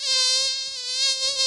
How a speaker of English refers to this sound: And up to 40 female mosquitoes are let loose on that piece of skin in a plexiglass chamber to see how long it takes for two of them to bite.